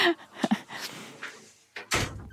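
A door is pushed shut, with a scrape of movement, a couple of soft knocks, then a solid, fairly loud closing thud near the end. No one speaks.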